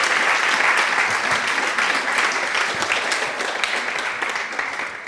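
Sustained audience applause, a dense wash of many hands clapping at a steady loud level for about five seconds, easing slightly toward the end with no voices standing out.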